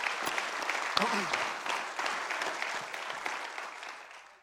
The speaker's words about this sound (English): So let's give them one more round of applause real quick.